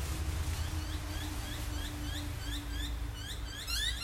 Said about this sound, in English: Alrighty, listen to those birds.